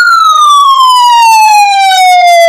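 A loud alarm siren effect on Super Cool Radio, signalling that the secret word, South Bend, was said: a single piercing, buzzy tone that glides slowly and steadily downward in pitch for a couple of seconds, with no voices over it.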